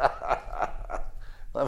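A dog barks in a quick, steady series of about five sharp yaps, moderately loud, with a brief pause before the last bark.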